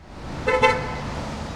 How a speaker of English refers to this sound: In downtown LA, Fifth Street between Broadway and Hill buzzes with the sound of passing cars and commuters leaving the Pershing Square metro stop.